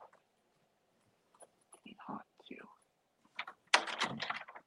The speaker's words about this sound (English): Now, so guys, let me go open my door, let my dog in real quick so he doesn't bust the door down, and then I'll be right back.